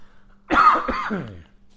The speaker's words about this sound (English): I'm telling you, these allergies are brutal, guys. For all my people living in Texas, how do you do it? Good God, I'm dying right now in Texas. I'm going to cough. Hold on.